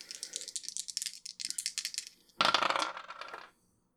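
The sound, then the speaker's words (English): Two dice are rolled in a tabletop role-playing game, landing on a 4 and a 2: they rattle with a quick run of bright clicks for about two seconds, then tumble out in a louder, denser clatter that settles to silence. Fairly loud, with no talking. “I would like for you to roll to manipulate someone.”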